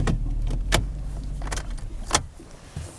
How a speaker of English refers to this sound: Eric parks about 200 yards from the lek